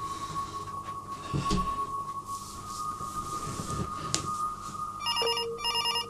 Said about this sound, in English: He's still waffling on, but now a telephone is ringing.